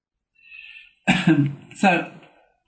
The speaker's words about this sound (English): Sorry about the cough, guys.